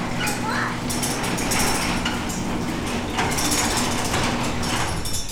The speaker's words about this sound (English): All right, kiddo, let's close the garage.